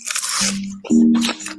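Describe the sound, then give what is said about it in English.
Crisp, wet crunching as teeth bite into a raw onion to dice it by mouth for Christmas turkey stuffing, with two loud bursts of crunching and chewing separated by a brief pause. “I'm going to show you how to make my Christmas turkey stuffing recipe using only my mouth.”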